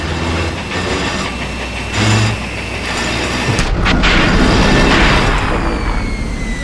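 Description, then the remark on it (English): A heavy mining drill in the South Sector of an open pit black opal mine grinds with a loud, steady low rumble, then jolts midway as it hits a snag, shifting into a rougher, strained churning that continues to the end. No voices. “The drill hit a snag again.”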